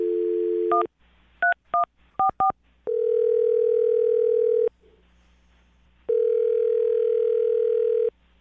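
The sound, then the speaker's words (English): A steady dial tone gives way to a quick run of touch-tone keypad beeps, then two long ringback tones with a pause between, all clear with no talking, as a woman's phone number is dialed. “Well, dial the phone number right now. Get her on the phone and get your second date.”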